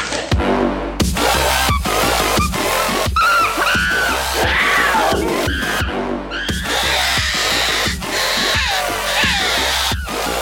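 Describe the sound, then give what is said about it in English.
A voice lets out loud, exaggerated fake screams, shrill wavering cries that rise and fall almost nonstop for about ten seconds, with a brief break in the middle. “One fake scream too far.”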